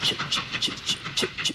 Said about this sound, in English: I want to bring you to this train station. I want you to hear something. So I listen to the train's going off.